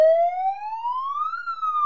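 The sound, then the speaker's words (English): A loud siren sound effect, the interview siren of the radio show Hat Trick City on WXCI, wails on its own, its pitch sweeping steadily upward and then dipping slightly in one short, continuous rise-and-fall, with no voices. “if you could do us a favor, ring the interview siren.”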